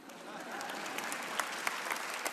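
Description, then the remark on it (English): An audience claps steadily throughout, a dense wash of many hands with a few sharper individual claps standing out, no voices clearly above it. “It'd be a good place to clap, ladies.”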